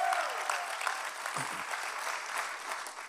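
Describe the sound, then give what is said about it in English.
An audience applauds steadily for their family at SCI Chester, joining in partnership with God Behind Bars, dense clapping at a fairly loud level throughout, with no one speaking over it. “Show them some love, family. Clap for them.”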